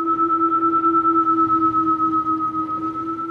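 A Tesla electric car's Acoustic Vehicle Alerting System (AVAS) warning sound, used on some Teslas: a steady, continuous synthetic hum built from two sustained tones, one low and one higher, holding evenly for the whole few seconds with no speech.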